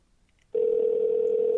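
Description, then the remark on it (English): A steady electronic telephone ringback tone on a call to a woman who has not answered, heard through a handset, starts abruptly after a brief quiet pause and holds evenly at moderate loudness until the end. “I'm gonna have to call again. If she ever answers the phone.”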